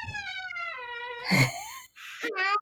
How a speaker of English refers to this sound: Door open. I love the door squeak. She just heard the door squeak open.